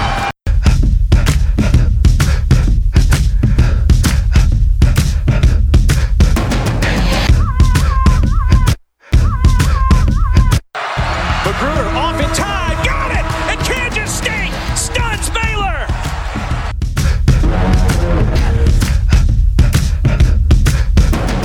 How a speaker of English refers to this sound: 12,000 fans here at Bramlage Coliseum spilling out onto the court. A huge celebration as Kansas State, for the first time since 1983, has knocked off the Kansas Jayhawks in Manhattan.